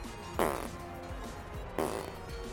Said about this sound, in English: I don't know what the fart sounds mean.